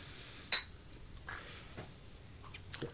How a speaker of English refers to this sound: Now we do shots. Clink, clink.